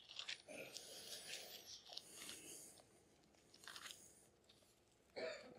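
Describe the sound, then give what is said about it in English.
Many Bible pages rustle and flip at once as people turn to Romans chapter 1, a soft, crinkly papery shuffle that swells in irregular bursts, with a sharper flutter near the end. No one speaks. “I hear those Bible pages rustling.”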